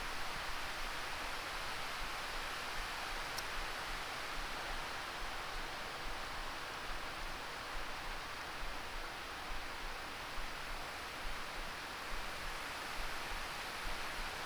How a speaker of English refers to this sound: I like the rain. It makes me stop.